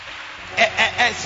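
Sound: hand clapping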